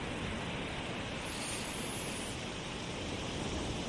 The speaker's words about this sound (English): As we walk along the edge of the beach and the sea, where the water gently laps up at our feet